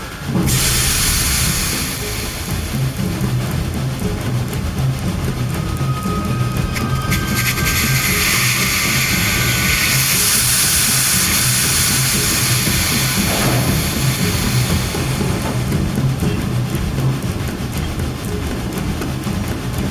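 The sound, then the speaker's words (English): A steam train, its brakes still engaged, lets out a loud, continuous hiss of steam that fills the whole stretch, with a low, rhythmic rumbling underneath and no voices. “Brakes are still engaged. We need to check it out. Get the lanterns ready. I'll go let out the steam.”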